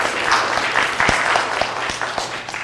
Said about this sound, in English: And why don't we give Pastor Phil a round of applause for all the work that he does for you guys.